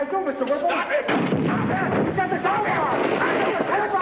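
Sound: gunshots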